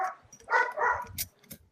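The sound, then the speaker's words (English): A dog barks, a short run of two or three sharp, fairly loud barks with a faint yip at the end. No voices. “His dog's making it.”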